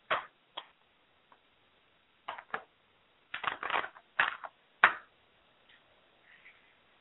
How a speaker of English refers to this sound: As you know, I read the Shustah cards, and that's what I'm doing right now, shuffling them a little bit.